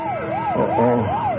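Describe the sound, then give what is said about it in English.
A loud bank alarm siren wails continuously, its pitch rising and falling in smooth repeated sweeps, with faint low rumbling underneath and no voices. “Oh, somebody in the bank must have hit the alarm.”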